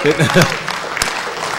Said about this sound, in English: Of course, notice the half-hearted clapping because half are still asleep, right?